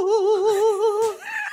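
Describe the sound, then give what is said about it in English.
A single voice sings a sustained, exaggerated warbling note with heavy, wobbling vibrato, loud, before breaking briefly onto a higher pitch at the end. “Do a little bit of the warbling on the podcast.”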